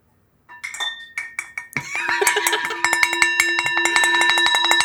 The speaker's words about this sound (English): A brand new bell. Ooh, it's that's a that's got some nice resonance to it.